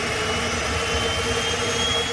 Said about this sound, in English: When Whenuapai tests its aircraft engines overnight, the noise can be heard for miles. But it's part of living near the airbase, right?